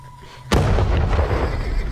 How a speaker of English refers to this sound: In an instant, there was a terrible shock, a detonation muffled in the multitude of snowflakes.